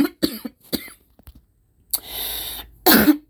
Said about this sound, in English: I had to cough. This is real.